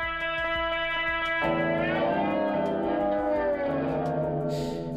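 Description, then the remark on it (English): A sustained synth tone through a reverb pedal set to an extremely long reverb, its tail smearing into a dense, shimmering wash that almost sounds like repeating delay echoes. Steady and fairly loud, with no voices. “So you can make it, again, outrageously long. It's almost a delay.”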